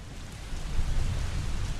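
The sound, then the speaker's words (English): Steady rain falls outside in Bogotá, Colombia, a continuous hiss of drops with a low, rumbling undertone that swells slightly after the first moments. No one speaks. “As it rained outside, which often happens in Bogotá, I talked to him in his apartment, a modest home in an affluent neighborhood of the capital.”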